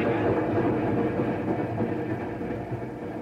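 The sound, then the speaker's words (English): A passenger train rolls along the rails with a steady, low rumble that fills the whole stretch without letting up, heard on its own. “Do you recall seeing me on this train last night?”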